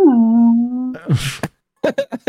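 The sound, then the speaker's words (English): A voice imitates whale noises: a long, low, droning moan that slides down in pitch, then a breathy rush and a few short, clipped vocal sounds. “Insert whale noises here.”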